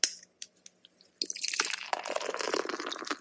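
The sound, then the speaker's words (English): A short hiss and a few small drips, then a steady gush of a triple dry hop double IPA from Monkish Brewing Company of Torrance, California, being poured into a glass, fairly loud, continuing to the end with no talking. “now that we've made it through the Week 5 board, it's time for a beer break. Let's check out what we're drinking.”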